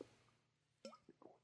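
Soft sipping of water: a few faint wet slurps and a swallow in quick succession against a quiet background, with no talking.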